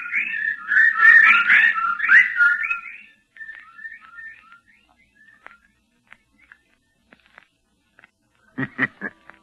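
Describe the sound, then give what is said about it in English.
A burst of many overlapping high chirping bird calls that thins out into scattered single chirps, then a short cluster of sharp rustling clicks at the end. “The birds. They didn't get him.”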